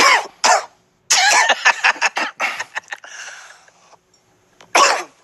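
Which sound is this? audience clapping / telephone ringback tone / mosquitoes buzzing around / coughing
coughing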